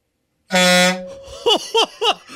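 A fire truck air horn attached to a fire extinguisher gives one loud, brassy blast about half a second long and trails off into a low hum. Three short, falling-pitch vocal yelps follow.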